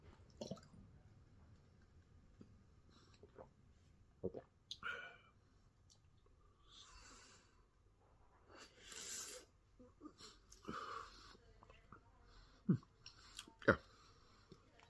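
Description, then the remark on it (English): Someone knocks back a shot in one go: quiet wet mouth noises, a few gulping swallows and scattered sharp clicks and squishes over about fifteen seconds, with no talking. “All right, bottoms up.”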